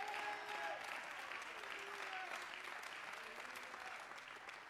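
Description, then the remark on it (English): An audience claps to the Lord in a dense, steady wash of applause, with faint voices calling out above it; the clapping holds its level throughout and eases only slightly toward the end. “Go ahead and clap to the Lord, would you?”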